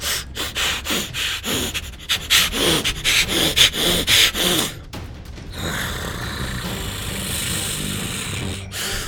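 Illyria, falling to all fours and transforming into a wolf, snuffles and pants in quick, rhythmic bursts of breathy sniffs for several seconds while digging at the ground under a garrison wall. The sound then gives way to a steady, rushing hiss of background noise.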